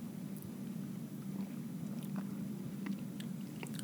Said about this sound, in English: Well, let's take a sip and see if the palate lives up to the lack of nose.